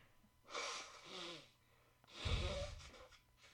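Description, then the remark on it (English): Someone blows their nose in two honking, breathy blasts, the second one louder and harsher, with a short pause between them and no talking. “Actually, I got to blow my nose first.”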